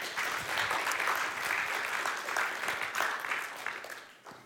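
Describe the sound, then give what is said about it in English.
An audience claps steadily for several seconds, giving Jesus a clap, a dense crackle of many hands at an even level that tapers slightly at the end, with no voices over it. “Well, let's give Jesus a clap for that one.”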